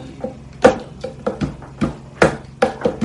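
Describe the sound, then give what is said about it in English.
A rhythmic knocking beat on a hard surface: about nine sharp, dry raps in an uneven pattern, some louder accents among softer taps, with no voices. “You hear the beat? Yeah. So, knock, knock, knock.”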